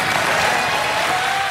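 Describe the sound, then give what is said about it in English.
A crowd claps and cheers steadily, a dense wash of applause that stays loud and constant throughout, with no individual voices standing out. “The audience starts cheering.”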